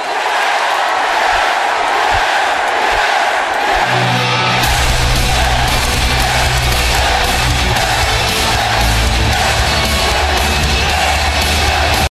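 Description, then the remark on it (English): A huge arena crowd at WWE Raw roars a 'yes' chant in unison for Daniel Bryan, a dense, loud wall of voices that stays steady throughout, with a low rumbling undertone joining in partway through. “So if I could just get one last yes chant, I would really appreciate it.”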